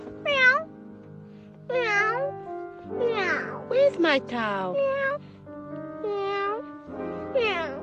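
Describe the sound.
A cat meows repeatedly and insistently at close range, a string of drawn-out, rising-and-falling cries with short pauses between, while a person speaks briefly in the background.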